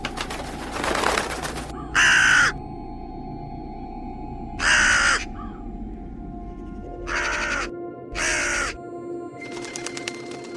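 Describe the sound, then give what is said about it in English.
A raven gives four loud, harsh caws spaced a few seconds apart, with only faint background noise between the calls and no one speaking. “The unsettling effect the raven induced in me went far beyond the normal.”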